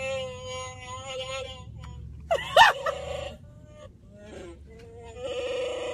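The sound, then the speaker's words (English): An electronic growling roar from a Chewbacca toy mask, wavering and bleat-like, plays steady for several seconds, with a louder, harsher burst in the middle before settling back into a long moan. “That's not me making that noise, it's the mask!”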